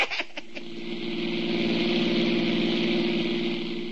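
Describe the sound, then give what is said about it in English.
A rented car's engine in Miami starts with a few sharp clicks and then settles into a steady running hum with a low, even throb. “Well, when we hit Miami, we rented a car, and as for the course, we made it in par. The road was wide open.”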